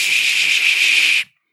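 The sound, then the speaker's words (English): A voice imitates steam hissing out the sides of a Shark Lift-Away floor steam cleaner that would not latch into its base unit: one steady, loud breathy hiss lasting just over a second, high and airy, then cutting off abruptly into silence. “And then it would just like psh and blow steam out the sides because it wouldn't latch in right and it wouldn't sit right.”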